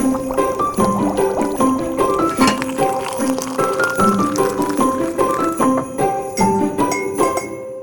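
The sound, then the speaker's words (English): Hot water is poured steadily over loose tea leaves, with a continuous splashing pour and light tinkling, ringing tones from the cup for several seconds, fairly loud, with no talking. “And while you drink it, apparently you leave the tea leaves in and you keep topping it up with hot water as you go.”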